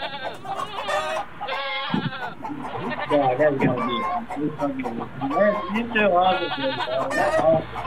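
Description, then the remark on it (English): A goat bleats repeatedly in wavering, nasal cries, fairly loud, inside a room with live chickens clucking in the background while voices murmur underneath. “The one with the chickens and the goat.”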